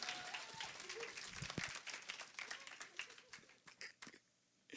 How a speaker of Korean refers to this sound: 박수 한번 쳐야지.